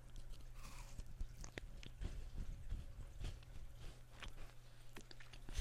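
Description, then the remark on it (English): Crunching and chewing of a crisp, crumbly shortbread cookie with an orange marmalade or bergamot filling, with repeated sharp bites and grinding crunches over a steady low hum, no talking. “Has a crunch to it, yeah. Yeah, but it's still like soft, like that sandy kind of texture.”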